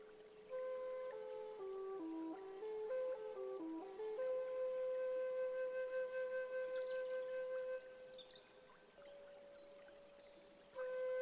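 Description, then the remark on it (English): A small stream flows steadily over rocks, a soft continuous rush of water beneath a gentle melodic tune of sustained notes, fairly quiet and even throughout with no talking. “a small stream is nearby, and you can hear the sound of the water as it flows over the rocks.”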